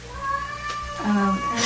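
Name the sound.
cat meowing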